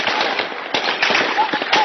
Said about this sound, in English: This is the reaction of the security forces against some of the people protesting in Sudan. Gunfire is heard as protesters scatter for safety in the city of Wad Madani.